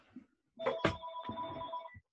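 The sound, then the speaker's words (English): A telephone rings with a bright, steady electronic tone that holds for over a second, beginning with a couple of sharp clicks, loud with no voices. “Phone's ringing. You got to get it.”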